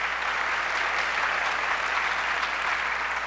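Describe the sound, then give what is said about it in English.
A church audience claps together in a dense, steady wash of applause that holds at an even level throughout, with no voices standing out above it. “Y'all can clap for that.”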